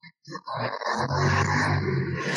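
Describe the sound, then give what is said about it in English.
A motorcycle roars past on the street, its engine a loud, steady low growl that swells and holds after a couple of short opening bursts. “As a motorcycle comes flying by my street”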